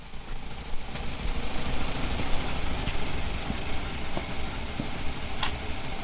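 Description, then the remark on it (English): An old Farmall Model A farm tractor engine runs steadily on a farm, recorded with an iPhone, a rough, continuous low rumble with rattling, uneven mechanical texture and no talking. “he had an old farmall Model A on his farm and would be happy to record it for me.”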